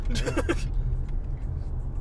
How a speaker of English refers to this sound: And we are definitely in some traffic right now.